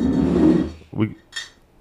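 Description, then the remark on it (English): Glasses clink together twice in quick succession, short bright tings with a brief ring, following a moment of muffled voice and handling noise. “Let's not be clanking glass against each other.”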